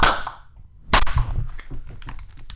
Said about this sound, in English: Did you clap? That's right. No. Clap.